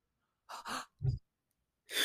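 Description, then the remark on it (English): A short demonstration of a ritual breathing exercise: a couple of sharp breathy inhales and exhales, then a low huffing burst, then another forceful breath, all alone with no talking. “Can we please get a demonstration of the breathing exercise?”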